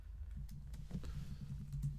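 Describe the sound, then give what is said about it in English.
A few soft, scattered clicks on a computer keyboard as someone types in a search, tapping at an irregular pace over a steady low hum, quiet, with no voices. “I'm just typing in Tiger.”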